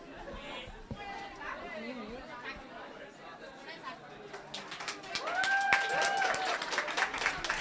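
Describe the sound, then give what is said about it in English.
A crowd murmurs and chatters, then a burst of audience clapping breaks out and grows louder for the last couple of seconds, dense, scattered claps mixed with voices. “Guys, if you're playing along with the experience, vectors and matrices don't clap. But for now, I'll allow it.”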